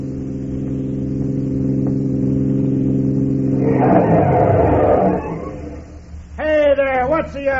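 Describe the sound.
The engine of truck number 14, pulling a trailer, rumbles steadily, then swells into a loud, rough roar as it draws near along the road; a man's voice breaks in briefly near the end.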